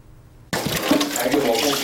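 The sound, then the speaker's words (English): After a brief hush, water suddenly gushes and splashes as volunteer cleaners empty still water out of pots and pans in the kitchen of an old leaking apartment building in Taipei, a loud, continuous rush that keeps going to the end. “Their first move is to empty the containers.”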